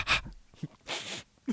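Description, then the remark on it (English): A voice mimics a couple of little sniffs of carbon monoxide, making a few quick, breathy inhales through the nose: a short sharp burst, a pause, then a longer airy sniff and a brief final one, with no words spoken. “Just a little couple sniffs.”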